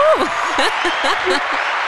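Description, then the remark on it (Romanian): A short burst of a steady applause sound effect, a dense crackling patter of clapping that holds at an even level for about two seconds while a person talks over it. “Da, eu aveam aplauze aici, apropo.”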